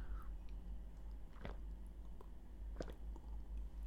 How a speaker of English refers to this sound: Let me just have a sip of this coffee. Oh.